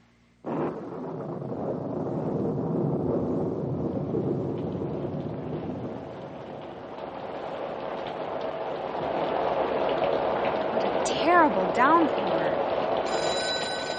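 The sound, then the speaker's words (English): A heavy cloudburst downpour with wind during a storm starts abruptly and roars steadily and loudly throughout, with a brief ringing tone cutting through near the end. “Downpour.”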